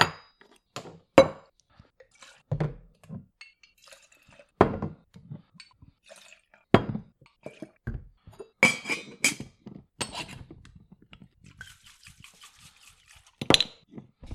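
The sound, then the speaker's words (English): A drink being poured, with glasses clinking and knocking together in sharp, bright taps scattered throughout, plus a few soft liquid splashes and sloshes between the clinks. “Got to pour more in there.”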